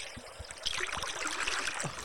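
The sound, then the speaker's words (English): A continuous wash of murky, bubbling water with soft gurgles and low thumps, steady, as if heard from beneath the surface, with no voices. “this one's underwater. This is underwater. Water sounds the same in all countries, right?”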